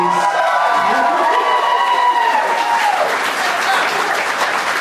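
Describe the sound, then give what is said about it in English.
An audience breaks into sustained applause with cheers and whoops for Rory Scovel, dense clapping going on steadily for several seconds, loud throughout. “Can we get a round of applause for Rory Scovel?”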